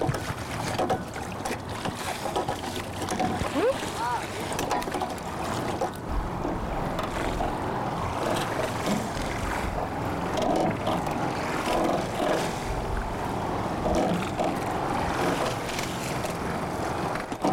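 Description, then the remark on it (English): A rowing boat moves across open water, with oars dipping deep under the water, splashing and churning steadily, wrapped in a constant wash of water and gusty wind noise against the microphone. “The other thing I want you to think about, if you can look at my oar for a sec, is your oars are going pretty deep under the water.”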